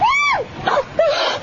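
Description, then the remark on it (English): A woman screams in a high, rising-and-falling wail, followed by two shorter strained cries, loud with no talking, from an adult film. “Not a horror movie. That's from a porno movie.”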